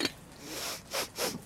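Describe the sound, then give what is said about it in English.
A jar lid being twisted open: a quiet rasping scrape, then two short gritty bursts of friction a moment apart, with no voices. “I'm opening the jar.”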